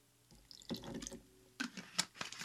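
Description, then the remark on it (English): A short splash of liquor is poured into a glass for a cocktail, a quick trickle and splash lasting a couple of seconds, fairly quiet, with small clinks and drips at the end. “Then I'm going to do a splash of this. You don't need very much.”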